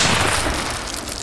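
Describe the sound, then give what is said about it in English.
A loud gunshot blast into loose gravel, a warning shot from a weapon aimed about 10 feet ahead, kicking up pebbles; a harsh burst of noise with a deep rumbling boom that stays strong for about a second without fading. No voices. “Aiming his weapon at least 10 feet in front of him, he deliberately shot the loose gravel.”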